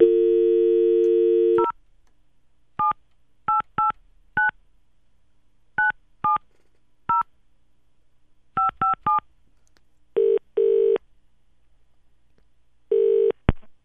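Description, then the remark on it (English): A steady dial tone cuts off, followed by a series of short touch-tone beeps as the number of the company Mycox Electrical is keyed in, then a couple of longer ringing tones. Clear, with no voices. “I'm now going to ring that company just to show you how they answer the phone.”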